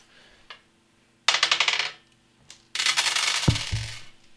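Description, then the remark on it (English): Five six-sided dice, rolled for sneak attack damage in a tabletop role-playing game, clatter onto a hard surface in two bursts, a short rattling tumble followed by a longer scattering roll with several sharp clicks, fairly loud with no talking. “So roll right. Damage. So it's 6d6. Oh, I only grabbed 5.”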